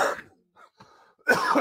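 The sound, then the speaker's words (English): A person coughs: a rough burst, a brief pause with a couple of small throaty sounds, then another harsh, loud cough; it is not a smoker's cough. “This is not a smoker's cough.”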